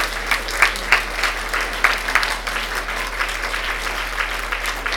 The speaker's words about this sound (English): I think we just need to clap our hands at this point, just to connect with that.